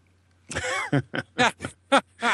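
A fairly loud run of about six or seven rough, throaty coughs in quick succession from someone turning their head during a stream, each a short harsh burst with a voiced edge, over a faint steady low hum.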